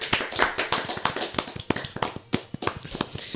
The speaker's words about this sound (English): I did the clap. Oh, you did? Okay. Yeah. The clapper. Yes. I did it right after the silence.